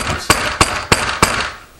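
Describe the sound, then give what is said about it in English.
New York City police (NYPD) pound on the door of a house in upstate New York: four loud, heavy thuds in a steady, evenly spaced rhythm, each a sharp booming knock, with no voices heard. “living with his dad 350 miles away in upstate New York, where, he says, a dozen times, city police have shown up and pounded on his door, yelling, NYPD, we know you're in there, open up.”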